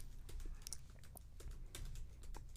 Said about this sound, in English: This episode is just me typing.